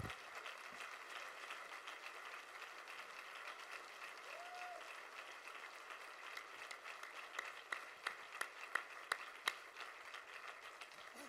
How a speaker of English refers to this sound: Would you give her another round of applause today?